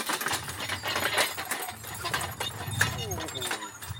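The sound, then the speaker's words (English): A logging horse walks through thick woods, its hooves landing in irregular, muffled thuds and crackles over a steady low outdoor rumble, with faint voices in the background. “So there's an example of how manoeuvrable a horse is.”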